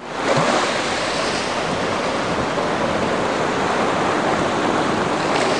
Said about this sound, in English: All I can hear is the thunder of the crashing waves.